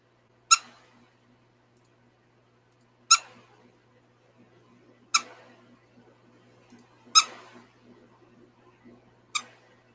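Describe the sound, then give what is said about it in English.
A squeaky pig toy is squeezed five times, each sharp, high squeak evenly spaced about two seconds apart, with faint low murmuring in the background between them. “All right, so we're going to do seven squeaks, and then we're clicking the button again.”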